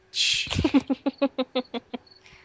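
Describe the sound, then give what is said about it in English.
Crickets chirping in a quick, evenly spaced series of about ten sharp, fairly loud pulses after a brief rustling burst, with no voices. “God, those crickets were poorly timed.”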